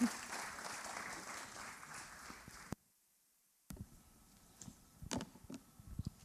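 An audience applauds with dense, sustained clapping for about two and a half seconds, then it cuts to silence before scattered claps, shuffling and faint murmurs resume.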